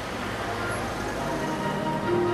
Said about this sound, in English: You're sitting at Cambridge. You think this is madness, isn't it, really? This traffic is madness, and you wonder why these people are hurrying around and who they're talking to on their phones.